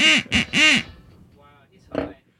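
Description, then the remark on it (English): A duck quacks three times in quick, loud, nasal bursts, then, after a brief pause, lets out one softer quack. “So one was a duck and one was ….”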